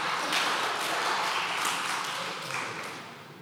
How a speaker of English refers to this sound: The long walk. The slow clap.